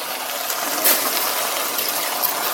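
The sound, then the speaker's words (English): Water from the sink pours steadily into a hot, sizzling pot of rice and tomato sauce during cooking, a continuous hissing, splashing rush with a brief louder burst near the start, fairly loud throughout. “Add the water.”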